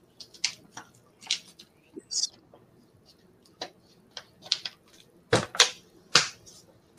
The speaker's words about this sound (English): Let me drink some water.